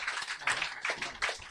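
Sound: round of applause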